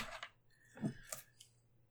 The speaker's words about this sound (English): I need a D6. I can't roll just one D6. I have to roll two D6.